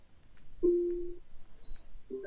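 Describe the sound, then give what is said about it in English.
An Echo smart speaker set to brief mode gives a brief electronic confirmation chime instead of a spoken reply: a sustained low tone, then a tiny high blip and a second low note starting, clean with no voices. “But instead, mine made a little da-dong noise.”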